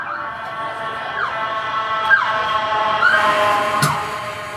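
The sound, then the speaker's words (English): An ambulance siren wails outside, its tone rising and falling in a repeating cycle, steady and fairly loud throughout with no one talking over it. “Another room ambulance. I don't know what's going on here.”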